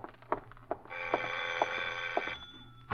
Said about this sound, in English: Then, just as you finish putting on your lipstick, the doorbell rings again.